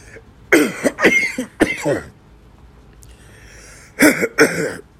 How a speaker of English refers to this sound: I'm sorry, I'm coughing on this motherfucker. Just, you know, the sinus and shit acting up. Allergies and walking past people all day.